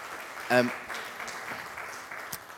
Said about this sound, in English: Yes, round of applause